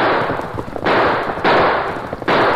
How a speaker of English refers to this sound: here it comes. A ride-in shooting.